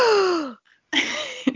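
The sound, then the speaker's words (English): A person lets out a loud, exaggerated gasp with a falling pitch, then after a short pause a second breathy, voiced gasp follows, with no other sounds. “Should I do it again and you can add the gasp this time?”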